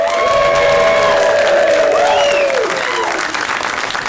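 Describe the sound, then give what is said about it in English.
A crowd applauds loudly and steadily for about four seconds, with cheers and whoops rising above the clapping before it tapers slightly at the end. “It should be applause first and then me saying we are back.”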